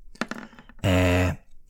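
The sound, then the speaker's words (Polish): A twenty-sided die, rolled to pick an effect from a table, rattles and clicks across a table in a quick burst of sharp taps, then a loud, steady, buzzing tone with rich overtones cuts in for about half a second. “No ale to przynajmniej tabelkę, żebym zrobił na 20, więc K20 kulamy na efekty ciekawe i pojebane.”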